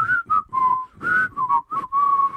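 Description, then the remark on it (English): Men in an adult video whistle the Smurfs theme song, a bouncy, tuneful melody: a string of clear, pitched notes in short phrases with brief breaks, sliding slightly between tones, with no talking. “of what seemed to be a Danish or German porn where it was two guys and a girl, and they were all in blue, and they were having this girl suck off the two guys, and the guys were whistling the Smurfs theme song.”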